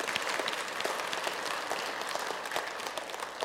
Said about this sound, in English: Give yourselves a round of applause for that.